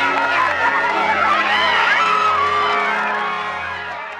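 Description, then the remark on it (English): A crowd erupts in loud, sustained screaming, laughing and cheering as someone beats a video game, with high fives all around, overlapping high-pitched whoops and yells blending into a continuous roar that eases slightly toward the end. “People are screaming and laughing.”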